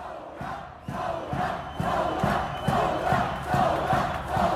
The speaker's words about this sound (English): One chant specifically targeted the foreign minister, Jibran Basile, who's also the president's son-in-law. And that's basically become the rallying cry of the protests.